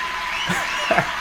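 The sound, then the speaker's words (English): A brief burst of crowd cheering and applause sound effect, a dense, steady wash of clapping and roaring voices with a few whoops rising above it, lasting just over a second. “Yes, hold your applause, please.”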